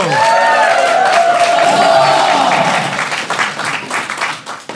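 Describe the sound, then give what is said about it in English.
A live audience at a Dungeons & Dragons event applauds loudly for the evening's sound-effects DJ, a dense wash of many hands clapping with a few whoops early on, holding steady for several seconds before thinning out toward the end. “Please, a round of applause for our D&D DJ,”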